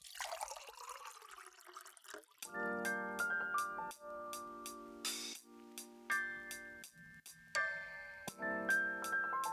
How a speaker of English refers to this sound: Pour the coffee! Pour the coffee.